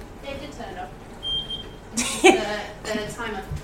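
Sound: oven timer beeping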